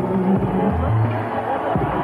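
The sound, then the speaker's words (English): A crowd of 5,000 people in the arena at a boxing event at Carnival City fills the air with a steady, loud roar of overlapping voices and shouts, a dense wash of cheering and chatter that never lets up. “Back down, 5,000 people in the arena.”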